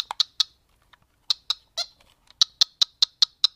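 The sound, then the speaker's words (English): Retro one-on-one basketball video game sound effects: short, sharp electronic blips, scattered at first, then settling into a quick, steady dribble-like rhythm. Clear, with no voices. “Can't see it, but you can definitely let your ears ring with the sounds of Jordan versus Bird”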